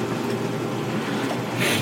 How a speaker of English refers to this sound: Do you hear that? That's the dishwasher.